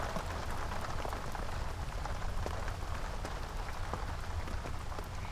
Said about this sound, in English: At first, the rain was light, but now it's pouring down in sheets! It actually looks like someone is pouring buckets and buckets of water over the campsite, doesn't it? What a downpour! I've never seen it rain so hard.